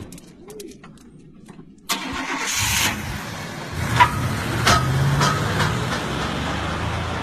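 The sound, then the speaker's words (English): A car engine cranks and turns over about two seconds in, then settles into a steady rumbling idle with a few sharp clicks and knocks over it. “So they all jump in the car, and he thought the dude took the keys, but you could tell as the other guys run out the house that you hear he while you hear him running, you could tell he had a key because the keys are shaking.”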